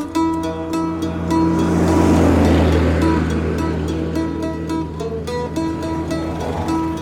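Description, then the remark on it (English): Overburdened heavy trucks rattle past on the Asia Highway, a steady low engine drone swelling loudly as one passes, with clattering rattles and road roar fading slightly afterward. “You can see overburdened trucks rattling past on the Asia Highway.”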